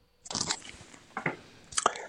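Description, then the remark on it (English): Crunchy chewing by a caller on a phone line, with three crisp bites or crunches spaced irregularly over about two seconds, fairly quiet with no talking. “Did he chew something?”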